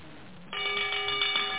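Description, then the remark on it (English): A Wall Street stock exchange opening bell, rung by a presider standing at a podium, starts ringing about a third of the way in, a loud continuous electric clang that holds steady to the end, with no voices. “A presider stands at a podium and rings a bell.”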